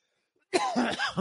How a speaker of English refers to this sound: And I started, and by this way, this cough, it's just like an allergy thing or something. I'm not sick.